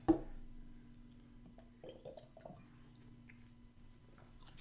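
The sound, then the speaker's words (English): Someone knocks back a shot of liquor: a sharp glass clink at the start, then a few soft, wet gulps and swallows over a steady low hum, with no talking. “Down the hatch.”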